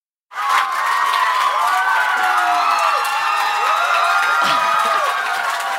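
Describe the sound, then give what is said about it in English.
A large live audience cheers and applauds loudly and continuously, with whoops and shouts rising over a dense wash of clapping that starts abruptly and holds steady throughout. “Let's just come back to this applause.”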